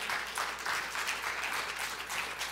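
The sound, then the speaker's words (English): A crowd applauds steadily, many hands clapping in a dense, even wash of sound with no voices on top, sustained throughout at moderate loudness. “And if you want to know, amen, you can clap to that.”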